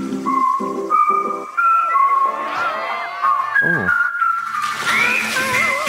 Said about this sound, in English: Round two. Which ad is this music from?